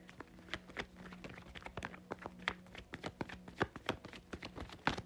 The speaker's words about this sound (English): Shuffling the cards again.